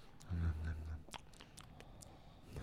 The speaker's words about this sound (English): Listen to him just chew.